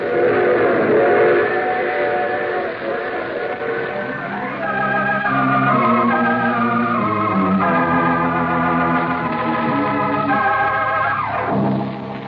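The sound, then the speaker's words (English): A train whistle sounds in long, steady harmonic blasts over the continuous rumble and clatter of a rolling train, loud, with no talking. “You see, I take the same train every week at this time.”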